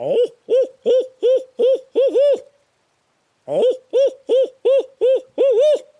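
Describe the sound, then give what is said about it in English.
An imitated owl hoot locator call, made early in the morning before daylight to get turkeys to respond, loud, in two rhythmic series of about seven hoots each, the last notes running together, separated by a short pause. No one talks. “Early morning is the owl call.”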